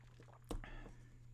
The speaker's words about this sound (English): Excuse me, I'm taking a sip of my coffee.